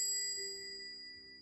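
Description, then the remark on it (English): A small bell above a curiosity shop door rings once with a bright metallic ding as a customer walks in, its clear tone lingering and slowly fading into quiet. “tentatively walked into the shop to inquire about its price, a small bell above the door announcing his presence.”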